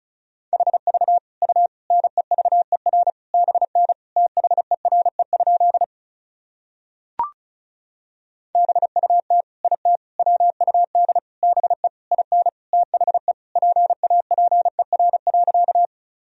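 Fast Morse code at about 35 words per minute: a steady mid-pitched tone keyed in quick dots and dashes, sent in two long runs separated by a pause with a single short click.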